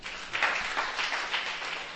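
A church audience applauds a speaker after his talk, with dense, steady clapping that swells slightly in waves at a moderate level with no voices over it.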